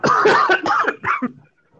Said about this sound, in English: No, it's been the dry cough, so at least it's been something better than nothing anyways.